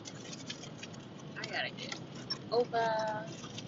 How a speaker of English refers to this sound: It's the worst when you be behind these semi trucks. Ooh, and it's raining. Because you can't see. They make it way worse than it really is. Make it all white.